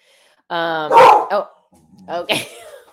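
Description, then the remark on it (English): A dog named Yeti barks, two loud, drawn-out, whiny barks separated by a short pause, with no one speaking over them. “Tell my dog that I'm doing a podcast.”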